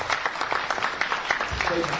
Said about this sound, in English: Give him a lovely round of applause.